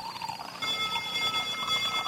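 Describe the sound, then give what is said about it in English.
A clock inside the grandmother in the 1982 TV movie The Electric Grandmother ticks steadily in a quick, even rhythm, moderately loud, over a faint background hum with no one speaking. “You mean you've got a clock inside you?”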